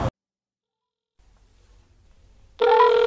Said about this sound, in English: Come on, man, pick up. Come on, man, pick up the fucking phone, bro.